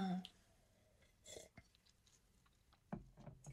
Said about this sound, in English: The last story is, sorry, let's sip a little bit.